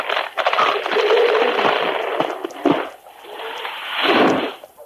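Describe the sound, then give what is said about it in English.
A log bridge, chopped with an axe, gives way in a long, loud splintering crash and falls to the floor of a ravine far below, with crackling snaps and tumbling rumbles running together before a final surge of breaking timber. “With a few more blows, the fugitive finally sent it crashing to the floor of the ravine far below.”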